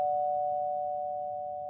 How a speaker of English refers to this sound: Do not ring that damn bell again, whoever is on the other side of the door, okay? Do not ring that... God.